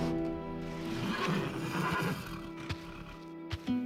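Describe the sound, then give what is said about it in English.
A horse whinnies in a stable in a long, wavering neigh that rises and falls, followed by a few faint thuds, like hooves shifting. “Tonight, Rosa and I had gone to the stables and walked hand in hand among the finest horses I had ever seen, making plans for our future together.”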